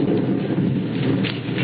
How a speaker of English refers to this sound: It's beginning to rain.